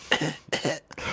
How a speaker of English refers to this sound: I might have it with this cough.